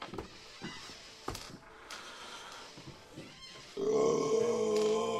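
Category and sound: human body sound, burp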